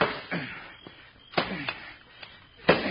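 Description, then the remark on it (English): A shovel strikes the metal lock of a strongbox again and again to knock it off: about half a dozen heavy, clanking blows at uneven intervals, fairly loud, with no voices. “Knock the lock off with the shovel.”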